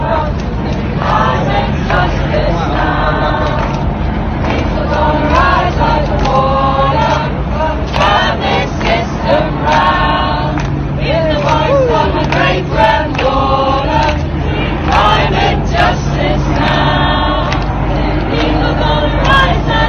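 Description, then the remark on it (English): A crowd of Extinction Rebellion protesters in red nun's robes and Guy Fawkes masks, moving through town, sings a gospel-style protest song about climate justice together, many voices blending in a steady, loud chant-like melody, with a continuous low rumble of traffic underneath throughout. “And they have the Guy Fawkes mask, and they're rolling through town, and they're singing this kind of, I guess, you know, spiritual gospel song about climate justice now.”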